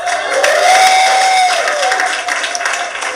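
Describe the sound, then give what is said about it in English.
An audience breaks into steady applause, a dense wash of many hands clapping at once with a few scattered cheers and whistles rising above it, sustained at full volume throughout, after a comedian says he is a recovering alcoholic 92 days sober. “Don't clap. It's court ordered.”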